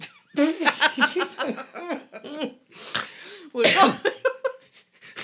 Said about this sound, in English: that was a snort cough laugh. I don't know what it was.